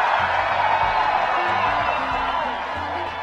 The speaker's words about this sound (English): You can hear how big these crowds are.